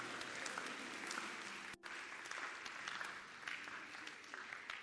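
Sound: audience clapping hands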